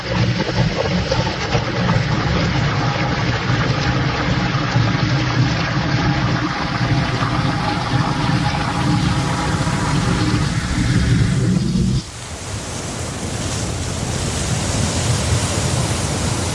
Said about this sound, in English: So all we have to do now is reverse that flush, and back to the surface we go. Hang on, guys, because here it comes.